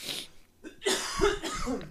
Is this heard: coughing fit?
yes